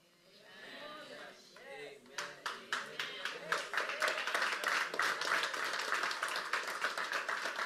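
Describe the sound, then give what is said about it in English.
A man speaks briefly, then a crowd starts clapping, first in sharp separate claps that quickly swell into loud, steady applause. “How come y'all clap for this?”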